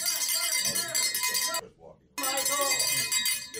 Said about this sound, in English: Look at this. Just shouting over everyone, ringing his bell.